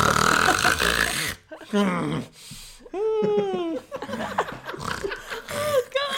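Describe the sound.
A voice imitates a person's irregular snoring: a rough, raspy snort-like burst, then uneven little moans and whiny rising-and-falling cries, with stops and starts between the sounds.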